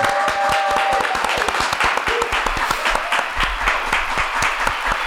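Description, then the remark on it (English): An applause crowd sound effect: a crowd applauds steadily for several seconds, a dense wash of many hands clapping with sharp individual claps cutting through, holding a fairly even loudness throughout. “You see, I got that crowd sound for you.”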